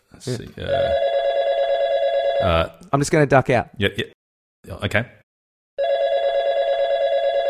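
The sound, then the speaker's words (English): A phone rings for an incoming call with two long, steady electronic tones, each lasting about two seconds, loud and buzzy. Between the rings, a man speaks briefly. “Because I think apparently there's someone calling in.”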